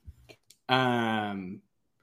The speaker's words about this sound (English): Bless you. So, I didn't know if that was a cough or a sneeze. That was a sneeze.